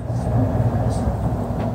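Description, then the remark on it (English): Heavy rubbish truck engines rumble steadily outside a warehouse at night as the trucks arrive, a low droning idle with faint higher hiss bursts. “It looks like all the rubbish trucks are arriving and having a meeting outside the warehouse tonight.”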